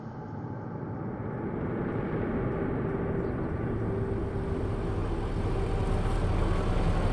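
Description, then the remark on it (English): A heavy truck's deep engine rumble drones steadily, growing slightly louder as it approaches, with a low humming tone running through the noise and no voices; one truck has just arrived and another is coming around the bend. “The first truck just arrived, and the next one was coming around the bend.”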